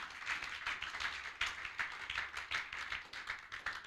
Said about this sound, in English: Can I hear someone give God a clap offering?